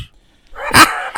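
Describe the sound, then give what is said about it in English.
A person imitates a dog's woof: one short, gruff bark-like sound, followed by a brief second burst. “No, it was just a little woof, dude.”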